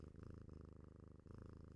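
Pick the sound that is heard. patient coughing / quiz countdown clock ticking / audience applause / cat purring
cat purring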